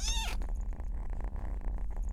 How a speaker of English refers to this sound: The kitten Miss Scrumples, who you heard at the beginning of this story, is now healthy. Like most kittens at the shelter, she was adopted in a single day.